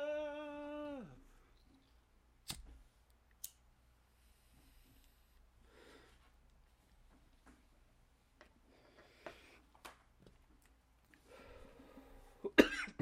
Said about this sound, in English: I just coughed because I'm a little emotional still. Choked up.